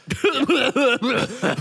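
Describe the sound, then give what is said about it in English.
A voice imitates a series of wet, phlegmy coughs, about five or six voiced bursts in quick succession, loud, with no other talking. “Just wet cough on her, yeah.”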